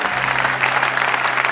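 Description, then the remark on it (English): An audience clapping hands together in a sustained, dense burst of applause, loud and steady throughout, with a faint low hum beneath and no talking, applauding to celebrate Jesus during a church service. “Let's put our hands together once again and celebrate Jesus, the owner and the builder of the church.”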